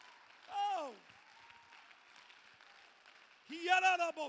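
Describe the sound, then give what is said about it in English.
An audience claps in the morning to show they believe the preacher's words, in a steady, dense wash of applause, with loud shouted voices rising over it at the start and again near the end. “Oh, come on, clap your hands if you believe it this morning.”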